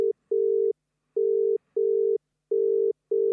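A phone line ringing out on the caller's end during a call to a grandmother: a steady electronic ringback tone in repeated double pulses, evenly spaced and clear, with no voices and no one picking up.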